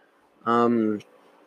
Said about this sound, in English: sorry for the coughing.